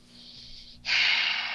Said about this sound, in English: Heavy breath, because this is hard.